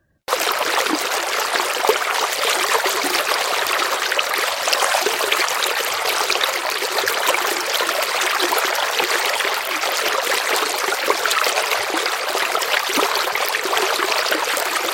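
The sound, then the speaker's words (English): A steady stream of trickling river water babbles continuously, fairly loud, with bright splashing texture and no voices or other sounds over it. “The river, which provided water to all the enchanted lands, started to dry up, causing much worry among the animals.”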